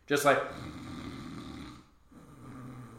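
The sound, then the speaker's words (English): A voice imitates snoring with a raspy, rattling inhale that drags on for a couple of seconds, pauses briefly, then starts again, moderately loud. “Just like snoring coming from their bedroom.”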